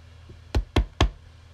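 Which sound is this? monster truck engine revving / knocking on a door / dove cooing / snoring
knocking on a door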